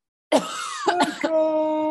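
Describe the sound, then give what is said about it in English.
A raspy throat-clearing cough from smoothie stuck in the throat: a rough opening rasp, then a few short harsh bursts, trailing into a steady voiced hum. “Why do you have a cough?”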